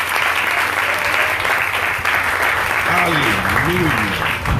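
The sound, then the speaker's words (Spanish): An audience at a church service applauds steadily, a dense wash of clapping lasting several seconds, with a voice rising and falling over it toward the end. “¡Ven, el aplauso si usted lo cree!”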